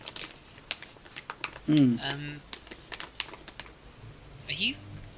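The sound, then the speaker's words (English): A plastic bag rustles in short, irregular crinkly bursts and sharp clicks. A voice briefly sounds twice underneath. “I'm rustling a plastic bag.”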